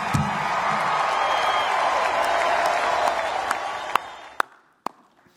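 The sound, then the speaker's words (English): A crowd applauds, clapping for the Philadelphia Eagles, with steady, dense clapping for about four seconds, then the sound thins out and ends with a few scattered single claps. “Probably the only time I'll ever clap for the Philadelphia Eagles, but.”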